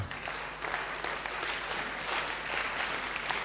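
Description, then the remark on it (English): A crowd claps steadily for several seconds, a dense, continuous patter of many hands at moderate volume, with no voices standing out. “Yeah, clap.”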